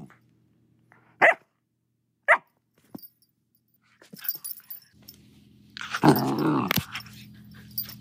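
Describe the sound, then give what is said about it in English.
Jet, a black lab terrier mix puppy adopted from a shelter, barks alone: two sharp, high yaps with pauses between, then a stretch of low growly grumbling that builds into a louder, rougher burst of barking. “And now we have Jet, a black lab terrier mix whom we adopted from the shelter 5 weeks ago.”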